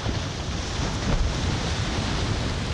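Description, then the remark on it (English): A small boat shaped like an albatross breaks through the waters of a brook, a steady rushing and splashing wash that stays fairly loud for the whole moment, with no voices. “Suddenly, a small boat crafted to resemble an albatross breaks the waters of the Babbling Brook.”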